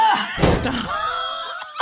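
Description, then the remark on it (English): Two heavy double doors bang open with a deep, booming thud, then a long creaking groan lingers as they swing, loud, with no one talking. “Drayla, Sissy, you take 4 bludgeoning damage as the 2 double doors swing open.”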